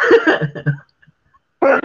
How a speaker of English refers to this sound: Bloody hell. Well, thank you for that. So I've had proper like bad sneezing today.